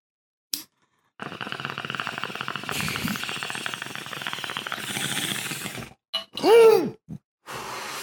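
A bong hit: a quick lighter click, then about five seconds of steady, rattling water bubbling, followed by a short strained exhale or cough and a breathy release.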